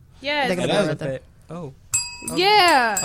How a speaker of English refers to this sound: Bring the bells, both of them. Bring the other one. Where's the clapper? Ooh, bells.